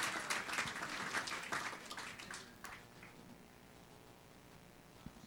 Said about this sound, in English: Thank you so much, band. Can we give the band a round of applause as they take their seat?